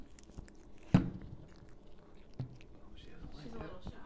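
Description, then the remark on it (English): A cat eats food with wet, quiet chewing mouth sounds, punctuated by two sharper crunching bites about a second and a half apart, while faint whispering sits low in the background. “Do they eat some more?”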